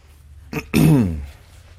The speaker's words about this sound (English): My wife says I clear my throat when I'm nervous, but pollen has a little bit to do with that today also, so please bear with me.